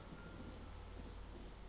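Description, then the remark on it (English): Steady rain falls in a continuous soft hiss with a low rumble underneath, fairly quiet and even throughout, with no voices. “Light glittered off the falling raindrops like sparks, making alien constellations in the dark air and the rain.”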